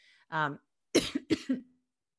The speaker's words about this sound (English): pardon me, I had a little cough there.